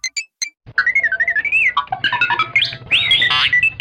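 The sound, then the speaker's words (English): A pressed button on a Star Wars toy plays R2-D2 droid beeps: a few short high chirps, then a run of warbling electronic whistles that slide up and down in pitch, ending in louder squealing trills with no talking. “There you go, R2-D2.”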